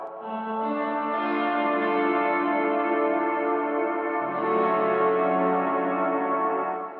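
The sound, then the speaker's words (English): Sustained guitar chords ring out through an 80s rack-mount style effect setting with the mix set very low, giving a shimmering, chorus-like effect that adds a subtle wash and slight echo, played steadily with no talking. “One is like an 80s rack mount. Oh, okay. Nice and patty. I've got the mix way super low.”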